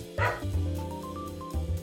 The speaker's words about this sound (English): My dog is barking, which means my wife is home.